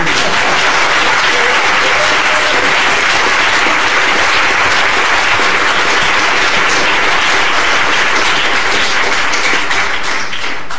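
Sustained audience applause for a panel, a dense, steady crackle of many hands clapping at a fairly loud, even level for about ten seconds, with no speech over it.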